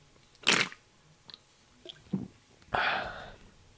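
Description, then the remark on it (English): Wet slurping of a drink: a sharp burst, a few small mouth sounds, then a longer, louder slurp trailing off, with no talking. “I had to do that because you can't see me drink it, so I gotta slurp it so you can hear me drink it.”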